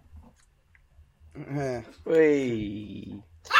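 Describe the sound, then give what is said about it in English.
A dog whimpers and grumbles in two drawn-out, wavering vocal bursts, the second longer and louder, with a short click at the very end. “Oh, it's dog. Matt's can't control this dog”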